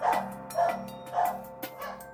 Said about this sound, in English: Hear that new addition to the music? That's Bella. That's Bella the dog. Bella, the Nova Scotia duck-tolling retriever. And when Bella barks, that means there's someone at the door.